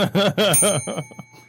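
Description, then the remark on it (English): A small hand bell rings, struck rapidly four or five times, loud at first, then its bright ringing tone lingers and fades out. “Oh, this is going to sound dirty, so I'm ready to ring this bell.”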